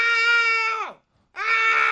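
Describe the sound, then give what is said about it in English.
A man given the latest mortgage interest rate to read lets out two loud, sustained screams separated by a short silence. The first holds a strained high pitch before sliding downward, and the second starts just as harsh and keeps going. “They don't even give you a number now. It's just a level of screaming.”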